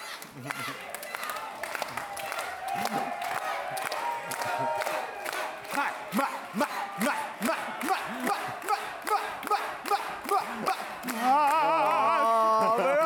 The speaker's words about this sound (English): Everyone stand up and clap.